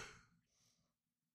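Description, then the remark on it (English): A person yawns in the evening, just past 5 o'clock, a breathy exhale that starts strong and tapers off, followed by a softer airy trailing breath, heard alone and fairly quiet. “That was yawning.”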